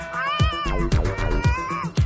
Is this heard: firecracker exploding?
no